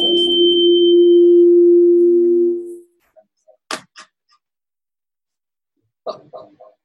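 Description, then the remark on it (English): A loud, steady electronic audio feedback tone from shared computer audio hums for nearly three seconds, then cuts off, followed by a few scattered faint clicks and thumps. “On one of the computers, that either the CIT Echo or the PowerPoint, you're probably going to have to leave computer audio so that it doesn't have any feedback.”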